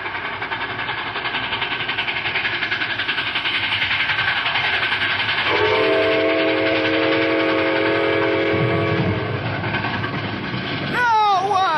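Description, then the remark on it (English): An approaching train roars steadily and loudly, its rumble filling the scene, while a long multi-tone whistle blows for several seconds in the middle; a brief shout or squeal rises at the very end. “See if it make them come to their senses and stop this train.”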